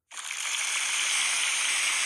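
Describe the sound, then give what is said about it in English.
A canned crowd-applause sound effect, played from an applause app on a phone, bursts in abruptly and holds steady as a dense, hissy wash of clapping. It sounds thin, with little low end, and no voices are heard. “Let me get my applause app on my phone.”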